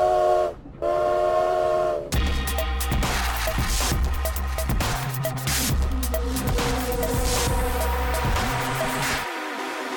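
A steam train's whistle sounds loudly, followed by the rhythmic chugging and clatter of a train arriving in Moscow, a steady mechanical rumble with no voices.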